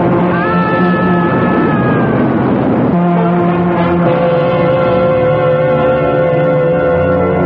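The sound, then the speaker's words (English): A loud southbound express train roars past at the Mount Kisco station, its horn blaring in sustained tones over a heavy, continuous rumble of wheels and engine, with the horn's pitch shifting partway through. “The obituary notice said that Theodore Rakosi met his death when he inexplicably ran in front of a southbound express at the Mount Kisco station.”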